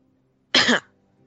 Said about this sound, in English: Cough pitifully.